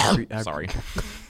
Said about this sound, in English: I had to clear my throat.